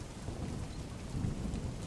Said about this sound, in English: Gone are the days I can listen to the rain falling down outside my window pane and not think it is an enemy trying to wash us away.